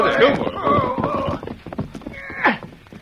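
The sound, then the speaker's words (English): Hooves clip-clop in a busy, uneven rhythm as two riders ride their horses through the woods toward a shack, with a brief, swooping horse whinny rising near the end. “Gunfire was heard by Jeff Whitman and Randy Simpson as they rode through the woods approaching the shack.”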